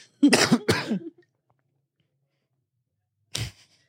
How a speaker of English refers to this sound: Why are you coughing? Did I give you COVID? I'm coughing because I don't know.